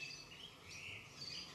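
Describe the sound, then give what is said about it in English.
Faint, high bird calls chirp intermittently over a steady outdoor hiss around a house in Australia, with no voices present. “She lives in a house surrounded by birds in Australia.”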